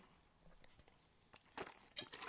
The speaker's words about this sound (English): Sorry, just had to take a sip of water there.